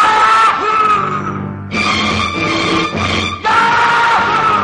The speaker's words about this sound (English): And as he screamed Yahoo, he totally swung the mood of a generation.